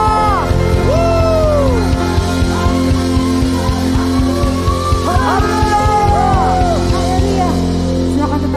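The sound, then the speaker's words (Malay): An audience shouts hallelujah together in a loud, sustained roar of overlapping voices, with rising and falling cries and whoops over a steady pulsing rhythm underneath. “Sorakan haleluya.”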